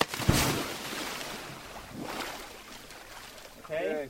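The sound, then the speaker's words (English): Steady wind and water noise out on the open ocean from a small dive boat about 12 miles off Cambodia's coast, with a sharp splash near the start and a brief voice calling out at the end. “2 weeks later, the recruits are on a small dive boat in the ocean, about 12 miles off Cambodia's coast.”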